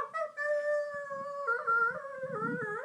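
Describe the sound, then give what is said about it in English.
A voice imitates a howling dog, holding one long, wavering tone that steps up and down in pitch for about three seconds, close and fairly loud, with no talking. “You didn't bark this time, though.”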